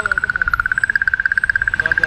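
Recorded comet sounds: a rapid, steady train of high, buzzy electronic pulses, about eighteen per second, holding one pitch throughout, with a faint low rumble underneath.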